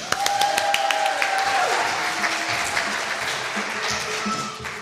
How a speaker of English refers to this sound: Can we put our hands together and then take them apart and then put them together and take them apart and put them together and take them apart in a rapid movement known as clapping for the Watt family?